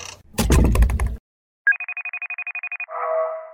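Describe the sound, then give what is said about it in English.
A loud clattering burst, a brief silence, then a telephone rings with a rapid, trilling electronic warble, followed by a steadier buzzing tone. The ring is clear, with no talking. “Stupid phone.”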